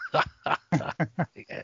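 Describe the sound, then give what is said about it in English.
A dog barks about seven times in quick succession, short sharp yaps in an uneven rhythm, moderately loud with no talking over them. “That dog of yours is cool.”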